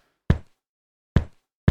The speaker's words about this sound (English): I used Atlas Shrugged and The Ballad of Songbirds and Snakes, because those are both really thick books. So here's the book noise with a little bit of me stomping on the floor as well, layered in.